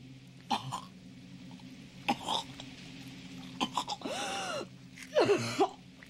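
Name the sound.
woman coughing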